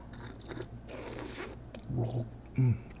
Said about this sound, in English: Okay, we're going to take a sip here.